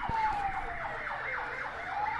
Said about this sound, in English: some sort of fire engine. I think some idiot has driven a truck into a bridge near my house.